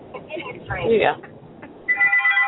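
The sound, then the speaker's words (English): A phone starts ringing with an incoming call near the end with a bright, steady electronic ringtone, following a stretch of muffled, thin-sounding voices and noise. “Oh my goodness, somebody's calling me, and I think it's her phone.”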